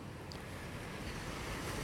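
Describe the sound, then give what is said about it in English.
Steady wash of ocean surf on a cloudy day, with a broad, rumbling hiss and some wind buffeting, continuous, with no voices over it. “It's a nice cloudy day here. A cloudy day on the ocean is, to me, almost as good as a sunny day on the ocean.”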